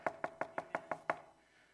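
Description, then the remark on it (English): Seven quick, evenly spaced knocks on a wooden front door, fairly loud with a hollow thud, followed by a brief quiet tail. No voices. “And then all of a sudden on the front door.”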